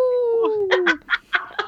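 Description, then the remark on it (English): A person imitates a wolf howl with one drawn-out, slowly falling wail lasting about a second, followed by several short, choppy vocal bursts. “I was really wondering if we're just going to howl like a wolf there.”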